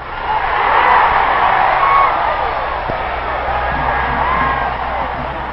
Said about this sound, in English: The flag waving grows frantic and the roar gets louder and the yelling and screaming drowns him out, and Barnett doesn't say another word.